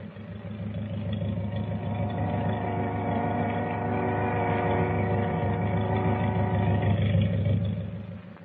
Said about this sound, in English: Wait a minute. What's that? Sounds like motors. It is. Hey, the boat's moving. She's pulling out.